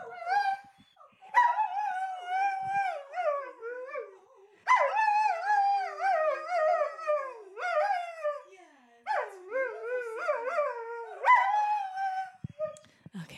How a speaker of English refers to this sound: Isn't he a good singer? Those pipes. What a little hound dog. Oh, I love him. He has more to say. Yeah, he just had a few more words.